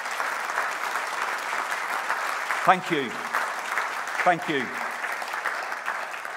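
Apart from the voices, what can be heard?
audience applause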